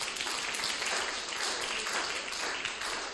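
A crowd applauds for the word of God, many hands clapping at once in a dense, continuous wash of sound that stays at an even loudness throughout, with no voices standing out.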